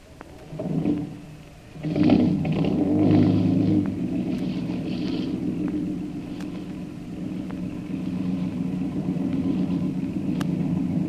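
A lifeboat motor is started; it sputters and catches after a couple of quick bursts, then settles into a steady, low chugging rumble that continues without any talking.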